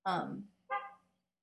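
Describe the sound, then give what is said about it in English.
A car horn beeps twice after someone blocked the car: a loud, brassy honk followed after a short pause by a second, slightly shorter and softer beep with a steady buzzing tone. “So yeah, sorry that somebody blocked their car and the horn beeped.”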